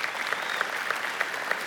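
An audience claps hands in praise to God, a dense, steady wash of many hands applauding together, with a few sharper claps standing out, moderately loud throughout the short burst.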